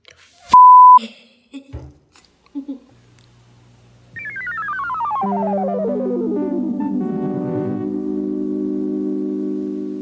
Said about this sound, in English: You gotta beep it out, though. I'll beep it out.